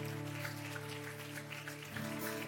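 church audience clapping

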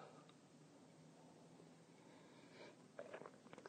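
sipping coffee

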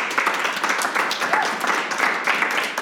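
audience clapping

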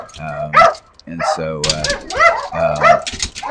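dogs barking

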